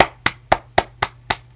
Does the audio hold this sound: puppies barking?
no